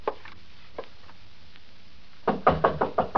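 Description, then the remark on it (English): A quick series of about five firm knocks on a wooden door, evenly spaced, following a couple of faint isolated taps amid quiet. “Door's open. Come on in.”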